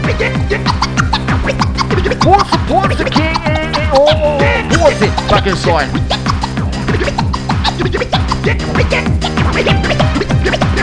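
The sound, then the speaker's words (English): Rapid turntable scratching cuts back and forth over a loud, steady beat, with quick squeaky pitch sweeps and stuttering chops running throughout. No voices come through clearly. “Yeah, all the scratching's making me itch.”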